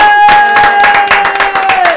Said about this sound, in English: All right, thank you so much, guys. Big round of applause. We did it.